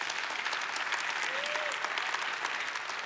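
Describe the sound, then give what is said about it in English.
A crowd applauds steadily for about three seconds, a dense wash of many hands clapping at even loudness throughout, with a brief faint rising-and-falling tone partway through. “man, I love that one clap.”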